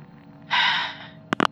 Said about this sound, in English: The phone on my desk rang. When I answered, only heavy breathing came through the speaker.